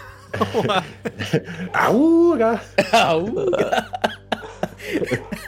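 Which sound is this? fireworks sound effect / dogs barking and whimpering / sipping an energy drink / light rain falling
dogs barking and whimpering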